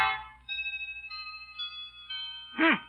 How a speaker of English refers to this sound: A chiming clock is heard as Grandma consults the old-fashioned watch dangling from a chain around her neck.